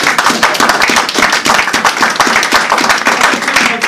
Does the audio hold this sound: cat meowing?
no